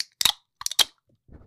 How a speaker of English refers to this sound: Okay, and you know, as we just mentioned, we do love to drink our claws, so we're both gonna go ahead and crack open a black cherry white claw.